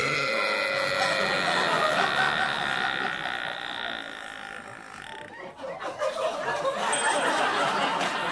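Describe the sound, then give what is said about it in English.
A woman's Guinness World Record loudest burp rumbles on for several seconds with a croaky, resonant tone, then breaks into rougher, noisier sounds toward the end. “World's loudest burp,”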